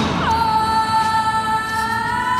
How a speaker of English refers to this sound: Is that the theme to cold case? That's the theme to cold case.